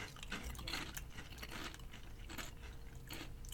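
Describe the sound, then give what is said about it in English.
Someone chews a Lay's potato chip, a steady run of crisp, crackly crunches repeating every fraction of a second. The crunching is fairly soft and there is no talking. “I mean, standard Lay's chip. A little soft on the crunch.”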